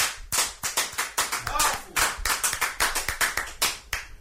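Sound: audience clapping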